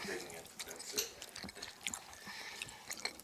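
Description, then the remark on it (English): Wet chewing and munching: irregular soft crunches and smacking mouth clicks from more than one person eating a dish that tastes like pizza, fairly quiet, with no talking. “We're munching away here.”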